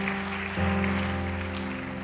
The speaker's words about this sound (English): Let's give everyone that put work into this awesome camp hand clap of thank you.